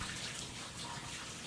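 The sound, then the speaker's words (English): Bath water pours steadily from a tap, a continuous rushing, splashing hiss at an even level with no voices over it. “If anyone out there is having trouble sleeping, a new study suggests taking a warm bath or shower before you get into bed.”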